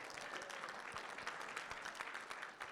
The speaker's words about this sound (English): Let's give the Lord a clap offering.